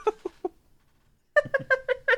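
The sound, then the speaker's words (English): A person imitates a cat meowing: three short meows, a brief pause, then a quicker run of five higher, insistent meows, all voiced clearly with no other talk. “So instead of just going, meow, meow, meow.”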